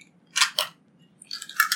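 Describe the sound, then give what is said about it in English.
Two sharp clicks, then a brief cluster of small plastic rattles and clacks as very small dice are taken out of a container and shaken in hand before a roll, with no talking. “He's getting out the dice now.”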